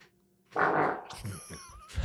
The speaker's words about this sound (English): That fart started mostly air, but I know that bitch ended fucking soppy. Oh no, does it smell?